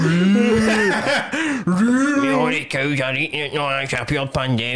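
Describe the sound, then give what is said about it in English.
A person's voice makes drawn-out, droning moo-like sounds, imitating a cow, with sliding pitch and short breaks, fairly loud throughout. “I thought you were doing a cow noise.”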